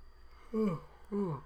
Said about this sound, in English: That's yawn number three, you guys.